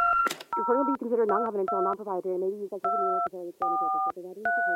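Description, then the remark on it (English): Short, steady electronic voicemail beep tones sound repeatedly, each a clean two-pitch burst, interleaved with a person talking over a telephone-quality line. “So after the beep, please answer the question, what's wrong with the Democratic Party, and how do we fix it?”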